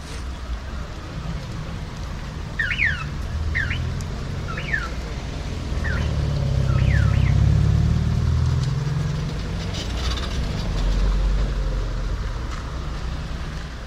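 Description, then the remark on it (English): A small three-wheeled moto taxi rounds the corner of a gray brick side street by an old church in Oaxaca, Mexico, in light summer rain, its engine rumbling closer, growing louder at mid-clip and then easing off, while a few short bird chirps sound early on over a steady outdoor hiss. “A three-wheeled moto taxi rounds the corner and slowly approaches.”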